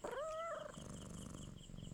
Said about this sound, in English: The lady stroked Blackie's fur and rubbed her ears, and as the cat liked it, she purred.